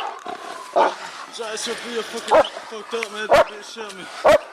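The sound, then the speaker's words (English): A police dog, being carried through the woods, lets out four sharp, loud barks spaced roughly a second apart, cutting through steady talking from people in the background. “I hear my dog yelping”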